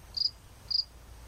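A black cricket chirps twice as it moves out from behind a pot, two short high trills spaced about half a second apart, clear over a low, quiet background hum.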